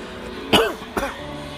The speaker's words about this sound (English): Yeah, that's me coughing, so you'll get to, you'll know something.